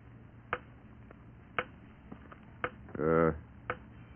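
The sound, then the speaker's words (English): A grandfather clock ticks steadily, four sharp ticks about a second apart over a low room hum, with a brief burst of voice between the last two. “All grandfather clocks tick like that.”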